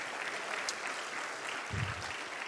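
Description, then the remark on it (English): A church audience claps together to praise God at a morning service, a steady, dense wash of applause that fills the whole clip, with a brief low thump about two-thirds of the way through. “Let's clap our hands and praise God this morning.”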